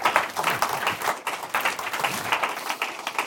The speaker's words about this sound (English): Amen. Can we give a louder applause for Jesus Christ? ¿Podemos dar otro aplauso a nuestro Señor Jesucristo? Amen. He deserves it. Él se lo merece.